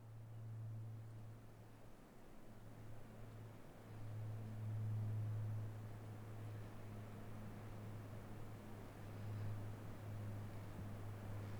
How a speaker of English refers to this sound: The sun was setting. It was totally quiet. Eventually, the whisper of a jet aircraft became audible.